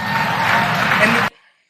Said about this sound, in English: And they clap. It was wild. That's the crazy thing.